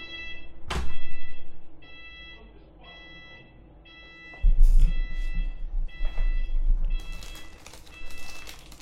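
A shrill electronic alarm, like a fire alarm, sounds in repeated bursts of high, buzzy tone, while heavy thumps and a low rumbling clatter break in partway through.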